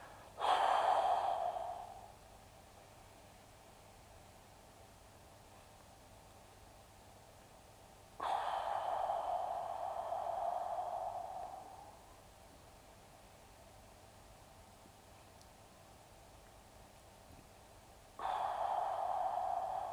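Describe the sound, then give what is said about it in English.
Slow, deliberate breathing in a demonstration of the 4-7-8 breathing exercise: a sharp inhale, a long pause of silence, then a drawn-out whooshing exhale lasting several seconds, followed by another breath beginning. “I'm apparently learning how to do the 4-7-8 breathing exercise.”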